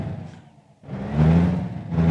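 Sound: truck engine revving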